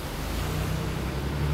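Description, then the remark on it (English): A steady wash of ocean surf rolling continuously, broad and hissing with a low rumble underneath, fairly loud and constant with no voices present. “We are on the beach, at the beach, right next to the ocean.”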